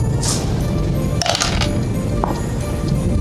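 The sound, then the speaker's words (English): A quick burst of bat dice clattering and tumbling across a hard surface, over a steady low background rumble. “Let me grab my dice, the bat dice.”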